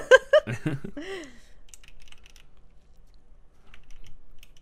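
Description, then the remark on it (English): A short burst of laughter, then a series of small, irregular plastic clicks and snaps as keycaps, including the D and S keys, are pried off a wet computer keyboard, fairly quiet. “I'm popping off the keys right now.”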